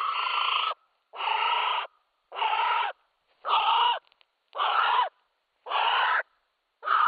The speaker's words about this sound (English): If you know anything about birds, you might have picked that was a female North Island brown kiwi.